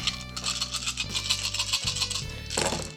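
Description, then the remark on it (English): A handful of 12 dice, rolled for a muscle check, rattles and clatters continuously for about three seconds, a dense, scratchy tumbling sound with a low steady hum underneath and no voices. “That means I'm rolling 12 dice.”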